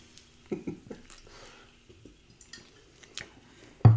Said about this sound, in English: Ooh, that tasty. That hits in like three or four different spots as I take a swig.